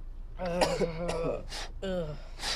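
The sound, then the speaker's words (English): A person coughs and clears their throat in a few rough, voiced bursts, with short breathy hacks in between, fairly loud. “You will stop a coughing. You're choking down.”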